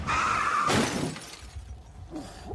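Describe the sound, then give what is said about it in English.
In April 2003, Rodney King's car, driven home, skids with a brief tire screech, then slams into a wall with a loud crash and shattering glass, followed by scattered debris settling. No one speaks. “Driving home, he crashed into a wall.”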